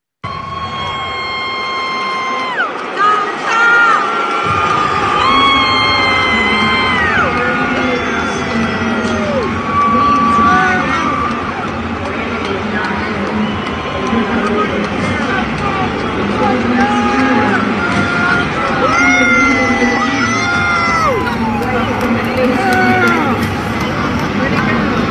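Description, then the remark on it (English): A loud arena crowd at the UFC 264 event roars and cheers continuously, with a girl's shrill screams piercing through the din again and again, sustained. “And I apologize ahead of time because there's a girl screaming. She's screaming like crazy.”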